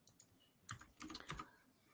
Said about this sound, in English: I'm sorry, but I'm typing right now.